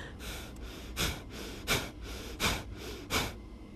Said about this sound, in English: I say seconds, but you count your 3 at whatever speed works for you. First part of the meditation is the breathing, 3 sets of 30 with your arms going up and down.